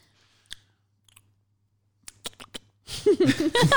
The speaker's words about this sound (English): Yeah, I can't stand noises like that. Smacking your lips.